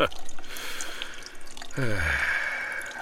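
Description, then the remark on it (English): Urine from an older man dripping and trickling into a urinal, a steady wet patter that swells into a fuller splashing stream partway through, fairly loud. “Dripping like a wet sock caught in the door of a washing machine.”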